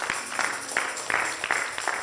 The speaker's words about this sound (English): Clap for her.